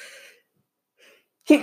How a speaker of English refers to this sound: Excuse me. Of course, when I decide to podcast, I have a sneezing fit.